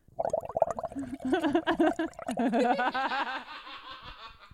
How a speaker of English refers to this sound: We got fancy straws and our little fancy. Can I blow bubbles in it? Yeah. Oh my gosh. It worked.